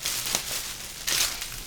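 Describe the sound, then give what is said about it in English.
A drink can being opened: a light metallic click, then a sharp crack with a brief burst of fizzing hiss, against a steady background noise. No one speaks. “I brought a can for it.”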